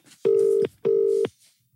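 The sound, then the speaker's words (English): Two long, steady electronic ringback tones from a phone line as a call is placed, each lasting under half a second with a short gap between, heard clearly with no voices. “Oh, it's ringing.”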